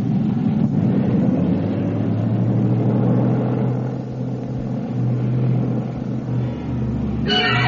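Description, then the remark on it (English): A plane's engine roars steadily as it takes off from a military airfield at Mannheim, a loud, continuous low drone with a rough, throbbing texture and no voices. “The plane carrying the actor Janos Capek left the military field at Mannheim”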